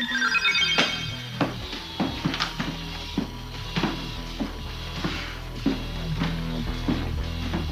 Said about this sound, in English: It's like boing. Like, I can't even describe it. It's like these computer chips and then these wacky zany noises whenever the robot shows up. It was an 80s robot. What do you expect?